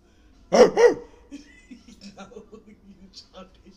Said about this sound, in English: Shut the fuck up, dog.